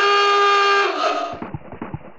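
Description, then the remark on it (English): A Batmobile's car horn gives one long, loud, brassy hoot lasting about a second, sounded at people feeding ducks, then cuts off, leaving softer irregular thumping and rumbling sounds. “Shall I give them a oot? This one?”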